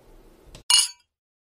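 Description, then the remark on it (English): A single bright clink of glasses touching in a toast to a successful interview, fairly loud, with a short ringing tail that fades quickly after a faint rustle beforehand. “Here's cheers to once again for a successful interview.”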